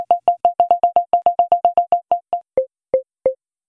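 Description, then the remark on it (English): A phone's proximity-detection feature sounds a rapid string of short electronic beeps while a person is very close. The tone then drops to a lower pitch as the default 6-foot threshold is crossed, and the beeps slow, spacing further apart as the person moves away. Clear, with no talking. “But as you cross over the threshold that you've set, which by default is 6 feet, it drops in pitch.”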